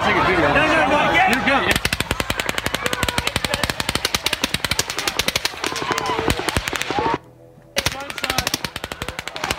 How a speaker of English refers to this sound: And you can hear it there, sustained automatic gunfire at the concert.